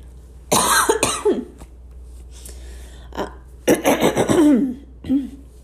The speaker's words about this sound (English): Oh, excuse me. 'Tis the season for coughs and things like that. It's the first cough I've had in a while.